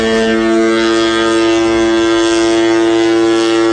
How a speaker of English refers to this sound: And we got to hear that foghorn live in Levi Stadium.